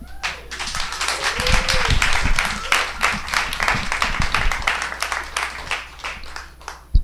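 A stand-up comedy audience applauds a comic after his set, a dense wash of many hands clapping at once that holds strong for several seconds before thinning slightly, with a few sharper individual claps standing out.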